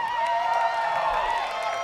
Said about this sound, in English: Look at her. Can we just clap for this outfit?